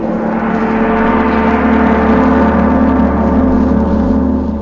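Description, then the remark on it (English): A big brass gong rings out loudly, its deep, shimmering tone and layered metallic overtones sustaining steadily for several seconds with no voices. “That, my friends, was a big brass gong.”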